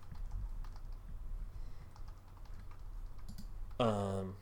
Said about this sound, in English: I'm typing now. Okay. But feel free to talk. The T on my keyboard doesn't work. Oh, there we go. Oh my god. I get this nice quiet keyboard, then mash it as hard as I can.